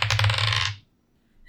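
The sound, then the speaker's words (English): Dice rattle and clatter across a hard tabletop in a quick burst, tumbling for under a second before settling into quiet, followed by a faint click. “I kept the good dice. No, I'm telling you, these dice are cursed.”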